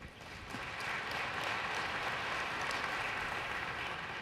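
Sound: audience round of applause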